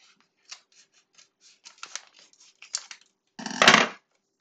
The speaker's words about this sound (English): you can do the honors of opening the package.